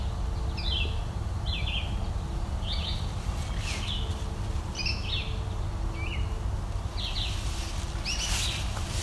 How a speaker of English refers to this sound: I think I heard a yellow warbler in the distance. Yeah, over there. It's also American goldfinch singing, calling.